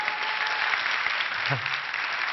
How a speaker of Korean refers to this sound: 자, 네, 박수 쳐주셔도 됩니다.